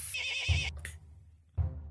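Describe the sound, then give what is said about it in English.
A horse whinnies with a high, wavering cry at the start, followed by two heavy, thudding hoof stamps on the ground, spaced about a second apart, as horses move forward. “You hear the hooves stamping on the ground.”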